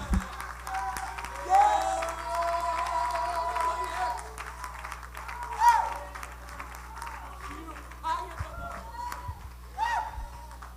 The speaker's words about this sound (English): Come on, let's clap our hands uproariously unto the Lord right now.